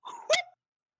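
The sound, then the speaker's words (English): A single short dog bark, starting with a brief whine-like rise and ending in a sharp, sudden yap, moderately loud, with no one talking. “Was that the dog?”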